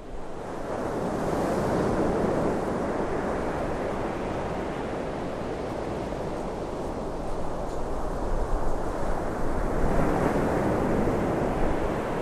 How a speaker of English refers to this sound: The relentless rhythm of the ocean waves is a reminder of the staying power of nature and of the city that lies beside these shores.